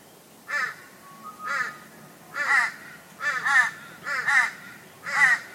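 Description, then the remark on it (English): A crow caws repeatedly, about seven harsh calls in uneven pairs and singles, loud against a quiet outdoor background with no talking. “Ravens and Crows”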